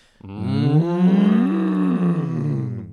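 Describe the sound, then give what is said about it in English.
A cow mooing sound effect: a single long moo, a low, drawn-out call lasting almost three seconds. Its pitch swells upward, then sinks back down, rich in harmonics and fairly loud, with no talking. “Just for anyone that hasn't listened to the podcast before, there is usually a sound effect of a cow mooing there.”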